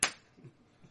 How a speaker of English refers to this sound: That was a real knee slapper. He slapped his knee.